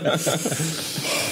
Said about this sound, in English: You got the Lamaze breathing going on. Kind of wants some more.